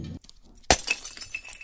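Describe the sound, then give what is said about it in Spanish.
A coffee pot is knocked off a table: a sharp crash of breaking glass hits suddenly after a quiet moment, followed by a scattering of tinkling, clinking shards settling for about a second. “Me tiraste la cafetera de la mesa.”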